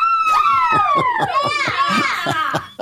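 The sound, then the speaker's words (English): A crowd screams together, many high-pitched overlapping wails rising and sliding in pitch, loud and sustained for about three seconds before cutting off abruptly. “That's a lot of screaming.”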